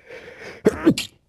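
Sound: sneeze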